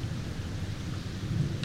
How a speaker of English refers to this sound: So I see this rain and then kind of just get hypnotized by it for a second. Do you hear thunder?